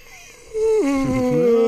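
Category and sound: human body sound, person yawning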